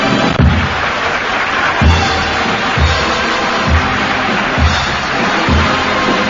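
A live audience in Las Vegas roars and applauds at the end of a song on a 1955 live album, in a dense, steady wash of noise, punctuated by regular low thumps about once a second, like rhythmic stomping or clapping. No voices stand out.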